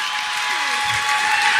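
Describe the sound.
A live comedy show audience applauds at the mention of Chad from The Bachelorette, in a steady, dense wash of clapping that holds at an even loudness, with faint voices mixed underneath.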